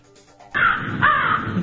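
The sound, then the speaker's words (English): A crow cawing sound effect: two loud, harsh caws in quick succession, clear, following a brief quiet lead-in with no talking. “And the crow reference.”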